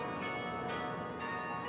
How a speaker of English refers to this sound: It's just bringing everything back, you know. Being here, you know, talking about and kind of reliving the steps of coming in and out of Yale. It's kind of eerie hearing the bells and walking down here and talking about them.